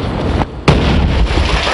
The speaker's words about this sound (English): And then, since this wasn't quite enough to scare the hell out of us, GAO investigators, after sneaking bomb ingredients past security, then reassembled them, blew up a car, and released the tape. Fire in the hole!